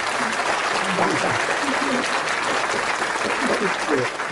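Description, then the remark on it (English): Steady, dense hand clapping fills the whole stretch, a loud unbroken patter of many quick claps, with a voice speaking faintly underneath. “So I just want to give y'all a hand clap for that.”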